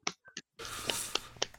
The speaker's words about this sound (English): Everyone clap.